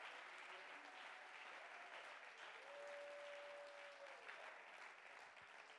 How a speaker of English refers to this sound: Let's clap our hands and give him praise.